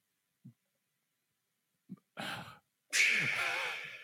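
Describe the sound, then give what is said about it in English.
A single loud sneeze: two small catching breaths and a sharp rising inhale lead into a forceful, hissing burst that trails off. No one speaks. “Gesundheit.”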